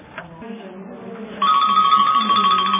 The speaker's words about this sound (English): Okay, my timer went off.